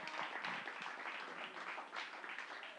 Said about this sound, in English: Come on, y'all, give the Lord a hand clap.